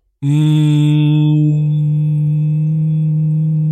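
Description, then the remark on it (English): A voice imitates the hum, a low droning noise reported in areas around the world, loud and unbroken for several seconds. It starts buzzy with bright overtones, then mellows into a smoother, even drone. No other sounds. “You should see the wavelength I produced doing that just now.”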